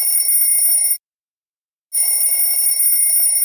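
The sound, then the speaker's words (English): A telephone rings in two loud bursts separated by a brief silence, its bright, buzzy bell tone unaccompanied by any voices. “Is that your phone or mine? I think it's your phone.”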